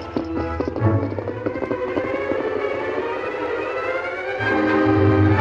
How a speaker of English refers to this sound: He was a Mexican soldier, and he ran to where he'd left his horse earlier in the evening, mounted and rode away.